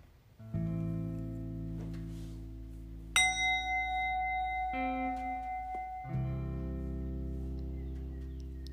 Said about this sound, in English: I will ring a bell to get started and close out the meditation with the sound of the bell as well.